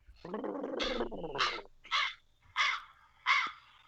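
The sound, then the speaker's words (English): Harsh crow caws repeat in a steady series, about five loud, raspy calls spaced roughly half a second apart, from crows circling overhead, with a brief voice-like sound at the very start. “Oh, my God, the crows are circling.”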